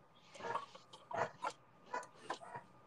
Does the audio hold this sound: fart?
no